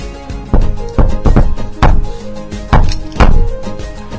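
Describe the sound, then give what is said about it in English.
Several firm knocks on a door, about six sharp raps in uneven bursts, fairly loud with a low background hum between them and no voices. “Come in, door's open.”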